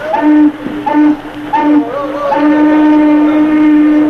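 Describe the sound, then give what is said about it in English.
A steamboat warning whistle sounds three short, loud blasts followed by one long, sustained blast, its steady mid-pitched tone rich with harmonics, blown to warn someone rushing toward the boat who might ram it. “Better give him a warning whistle.”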